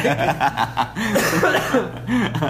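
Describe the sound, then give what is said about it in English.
Someone coughs into a scarf, a few muffled coughs broken up by chuckling and voiced laughter, without clear words. “I feel like you coughed right on Jeremy. I coughed into my scarf.”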